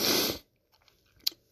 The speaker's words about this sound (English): Coffee sip. Sorry. That was a long sip. I wanted to polish it off before it got too cold.